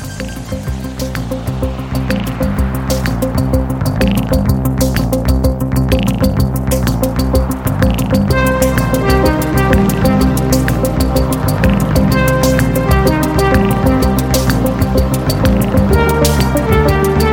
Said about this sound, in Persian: آهنگساز 71 ساله و فرانسوی، این آهنگایی که میشنوی توی یکی از مصاحبه‌هاش گفته بود که من بیشتر عمرم رو با ماشین‌ها گذروندم تا آدم‌ها، و منظورش از ماشین همین سینتیسایزرها و کامپیوترها و وسایل الکترونیکیه که باهاش این صداها رو تولید می‌کنه.